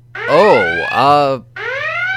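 A loud electronic alarm blares in warbling, rising and falling tones, cuts out briefly, then sounds again with a steady wail. No one speaks over it.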